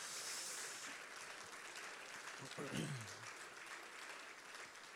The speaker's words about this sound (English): Why don't you clap your hands to the Lord?